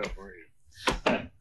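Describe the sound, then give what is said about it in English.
Two quick, solid thuds of a man's taped-up fist striking a wooden Wing Chun training board, fairly loud, landing a beat apart after a brief murmur of voice. “He punches this board.”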